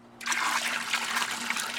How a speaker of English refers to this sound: The sludge splashes onto a screened box that's submerged inside the trough.